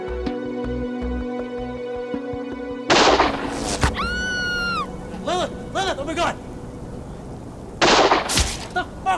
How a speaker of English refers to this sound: What are you doing? Why the hell are you shooting this way? Because that's the way the deer is. We got him.